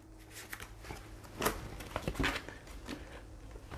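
shuffling playing cards

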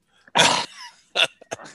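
puppy noises

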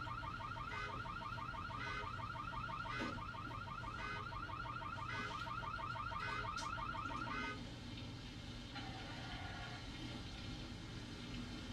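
car alarm going off

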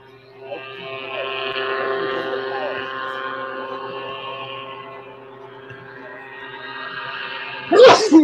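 sneeze

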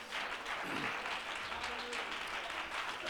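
audience clapping hands

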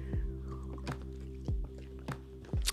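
sipping tea

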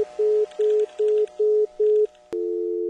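telephone dial tone

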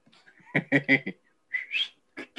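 person whistling

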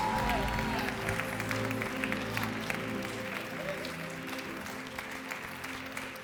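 audience clapping hands

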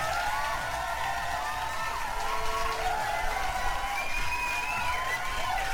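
applause

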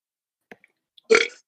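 weak burp

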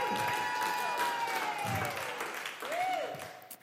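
audience applause and cheering

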